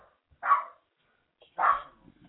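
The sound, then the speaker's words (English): Two sharp barks from a stray dog loose in a studio, about a second apart, each a short bright burst, fairly loud with quiet gaps between them and no talking. “We're trying to get this dog out of the studio.”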